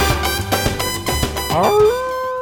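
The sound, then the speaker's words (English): A wolf howl rises in pitch and then holds a long, steady, mournful note near the end, after a busy stretch of rhythmic, percussive sound. No one speaks. “Yeah, that's the lonely cry of the wolf.”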